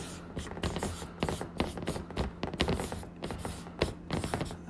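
A marker squeaks and scratches across a whiteboard, writing the title "About page", in quick, irregular strokes, each a short hissy burst, steady and moderately loud for several seconds with no one talking.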